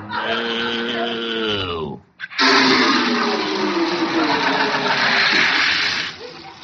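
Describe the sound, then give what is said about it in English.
After a brief groaning, whining sound from the pipes, water gushes loudly and steadily for a few seconds, then cuts off abruptly as the supply runs dry. “We're out of water.”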